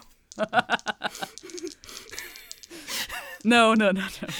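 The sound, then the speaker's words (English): A person imitates deer noises with a quick run of short voiced grunts and breathy snorts, then a loud, strained, wavering bleat to finish. “These are the sounds that deer do.”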